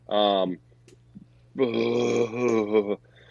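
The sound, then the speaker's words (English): A voice imitates a spooky ghost burp: a short guttural croak, then a longer wavering, groaning belch after a pause, both loud, with no other talk. “That was a ghost burp, by the way.”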